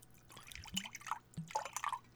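Water is poured onto a person's hair and spatters, with a few irregular splashy drips landing in quick bursts over a couple of seconds.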